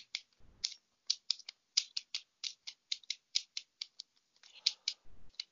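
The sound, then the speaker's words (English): Rapid, crisp papery snaps and flicks repeat in quick bursts as a deck of tarot cards is shuffled before a reading, with a couple of soft low thumps and no talking. “Wow, they have me shuffling here.”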